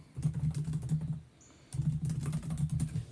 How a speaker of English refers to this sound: okay, I'm just typing this because I want to do the title.